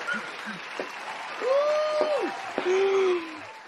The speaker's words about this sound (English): We got a special guest today. Yes, sir. Please cue up them claps, please.